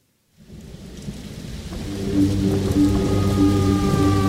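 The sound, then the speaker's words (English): Heavy rain pours down steadily after a brief silence, growing louder into a dense, continuous roar with deep rumbling and a sustained low drone underneath. No one speaks. “I can't remember the last time I saw it rain like that.”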